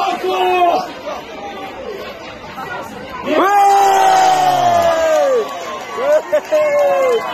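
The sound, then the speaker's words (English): A large stadium crowd jeers and shouts, calling a player a wanker, over a dense roar of babble, with sustained group yells swelling loudly mid-clip, then falling and rising again in shorter bursts toward the end. “Here, pay attention, this is what it sounds like from the crowd.”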